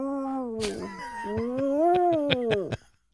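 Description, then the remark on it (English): On Rock 102 radio, a person imitates a mournful wolf howl for a contest winner: one long, wavering voiced tone that dips, rises slowly and falls away over about three seconds, with a few sharp clicks underneath. “And when you win, I'm going to give you a sad wolf noise.”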